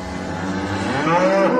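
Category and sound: animal, cows mooing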